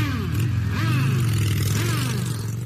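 A motorcycle engine rumbles steadily outside a biker bar in Sturgis, South Dakota, its pitch swelling and dropping in a couple of throttle revs over a few seconds, loud and continuous with no voices.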